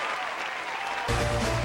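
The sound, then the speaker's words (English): A steady round of clapping from a group, dense and crackling throughout, growing fuller and louder partway through as a low rumble joins in. “Give you an after further review round of applause.”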